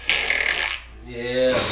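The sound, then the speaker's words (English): A hissy rush of breath gives way to a buzzy, low-pitched lip raspberry, a mouth-made fart sound lasting about half a second, then another airy hiss closes it out. “That's a mouth fart.”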